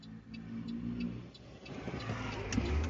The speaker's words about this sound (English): I am recording this in my car.